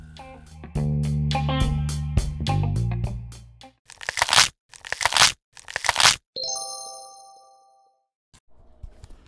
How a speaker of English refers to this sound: we want to start this new thing called Sound Bites, where you get a little munch, munch, crunch, crunch midweek on some tea that's going to be coming down the pipeline.